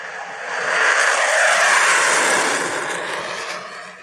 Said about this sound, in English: Is that your fighter jet